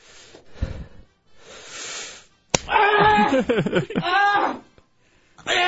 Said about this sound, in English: I'll let you slap yourself now. Go ahead and slap yourself. In the face? Yes.